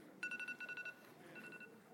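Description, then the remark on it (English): A timer alarm beeps in a quick run of about six short, high electronic pulses, then a fainter, longer beep follows; no talking over it. “I just closed my Bible and the timer went off.”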